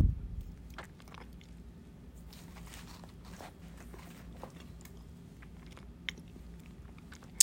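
Someone munching on food, with quiet, irregular crunchy bites and wet chewing sounds continuing steadily, and a couple of sharper clicks near the end.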